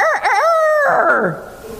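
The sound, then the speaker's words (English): A person's voice imitates a rooster crowing, one loud cock-a-doodle-doo with a wavering start, a held middle and a falling finish, then quiet. “He had the snooze alarm, you know, the cock crew once.”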